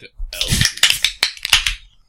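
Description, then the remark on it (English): A Guinness beer can cracks open with a sharp snap, then the foam hisses and squeaks in a few bright, crackling bursts over about two seconds, fading at the end. “Did you hear the foam? Did you hear just like squeak right out of that?”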